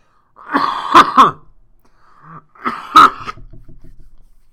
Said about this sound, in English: And then just coughing up a storm.